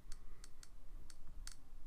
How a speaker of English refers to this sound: Your phone's making a very clicking noise.